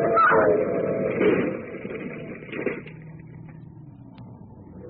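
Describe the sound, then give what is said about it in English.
A car engine roars loudly at a railroad crossing as a train rumbles, the car trying to beat the train across, the rushing noise peaking early and then settling into a steady, lower mechanical drone. “Oh, Lamont, they're going to try and beat that train.”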